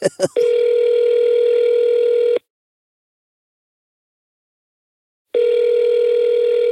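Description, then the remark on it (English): A brief burst of clicks, then an outgoing call rings over a speakerphone: a steady electronic ring tone lasting about two seconds, a pause of silence, and the ring starting again. “I purposely did not look into what would happen when you called it. I'm going to speakerphone it.”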